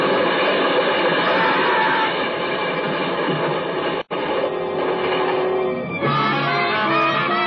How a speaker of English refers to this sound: The light changed as we crossed the switch and the runaway cars raced out. A dead end spur.